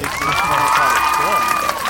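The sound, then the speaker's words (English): An applause sound effect: a crowd cheers and claps in a steady, dense roar for about two seconds, with a long high whistle riding over the noise and scattered shouts mixed in. “If we had sound effects on this show, strong. I'd give it applaud. Sound effects.”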